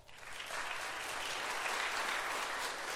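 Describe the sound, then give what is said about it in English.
An audience at an Awana event breaks into sustained applause for the TNT group, a dense, steady wash of many hands clapping that swells quickly and holds at an even, fairly loud level throughout, with no voices standing out. “And let's give all the TNT one more big round of applause.”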